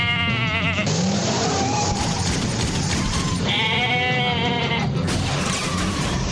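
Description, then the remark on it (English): A goat bleats loudly twice, each a long wavering, quavering cry, with a rough noisy background filling the gaps between calls. “But I can't help but feel that besides getting a special recognition from the local cops, that maybe someday this goat should get his own TV show.”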